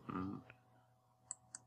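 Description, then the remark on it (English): A brief voiced fragment, then a few sharp, sparse keyboard clicks picked up by a new microphone, spaced irregularly against a quiet background. “Now, see, that's the typing.”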